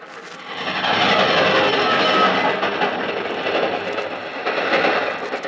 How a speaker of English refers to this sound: It was the train that gave me the idea. I stood there at the deserted level crossing, and suddenly I knew how I could kill John Dunn. The crossing is dangerous. There's a sharp curve. Belts of fir trees to the right and the left screen the trains.